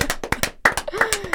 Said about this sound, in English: I'm going to go to Willamette University. Congratulations. Thank you. Clap it up.